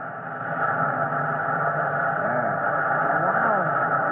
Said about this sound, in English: Watch what the captain's doing, son. I've opened her up now. That hiss of air is the warning. Any second, the water will come whamming through this nozzle.